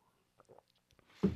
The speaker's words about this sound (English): Oh, man, I got to take a sip.